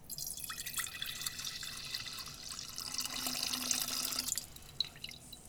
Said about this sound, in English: Okay, so we have our pitcher. I'm going to put our 2/3 cup of lemon juice. All right, so I'm putting our lemon juice in our pitcher.